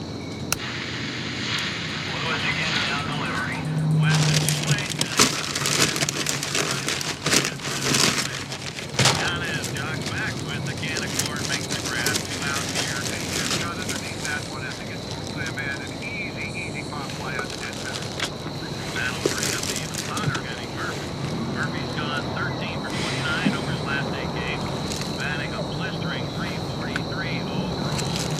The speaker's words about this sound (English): I will play the clip right now. It's just a baseball broadcast and Mike crinkling a brown paper bag. So no spoilers other than that he puts his sandwiches in brown paper bags.